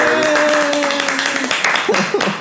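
A loud tavern crowd breaks into applause and roaring cheers, dense clapping mixed with whoops and shouting voices, energetic, tapering slightly toward the end.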